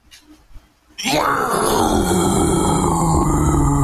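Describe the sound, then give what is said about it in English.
After a second of near quiet, a voice lets out a loud, rough, sustained low growl that holds steady for about three seconds, imitating a bear-like snarl. “No, do a low growl.”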